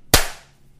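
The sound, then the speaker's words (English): A single sharp hand clap made to sync a recording after a 3, 2, 1 countdown, loud and abrupt, with a quick decaying tail that fades within half a second. No voices accompany it. “Did you clap? Because I didn't hear yours. I did clap.”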